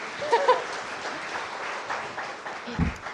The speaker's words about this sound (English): Round of applause.